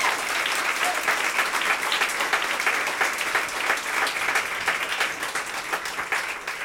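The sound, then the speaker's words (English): A crowd applauds steadily for the band, dense clapping sustained at an even loudness across the whole stretch with no voices standing out. “Could give them a round of applause.”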